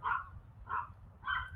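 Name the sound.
dog barking outside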